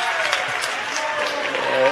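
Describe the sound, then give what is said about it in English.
A basketball crowd, many of them kids, claps steadily after a player draws a charge, in a dense, crackling wash of applause that holds at an even, fairly loud level for two seconds, with cheering voices mixed in underneath. “The kids love when these guys get these charges. Everybody's smiling and clapping and laughing.”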